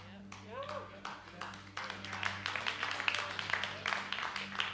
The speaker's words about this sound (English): That was a boss clapping, the first one. The first one.